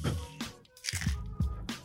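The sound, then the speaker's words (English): Crunchy bites into a hard taco shell, several sharp crackling bursts in quick succession with wet chewing between them, fairly quiet overall. “At least it's crunchy.”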